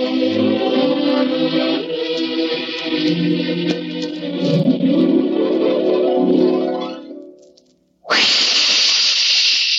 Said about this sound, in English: Listen. That jet of fresh, pure moisture stands for the new, different Moisturized Rolly 903.